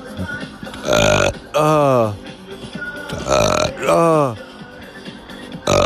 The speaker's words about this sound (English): Oh, bourbon burpee, bourbon burpee, bourbon burpee. It's a bourbon burp. You be loving it.